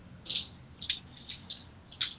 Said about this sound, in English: The rain is very loud.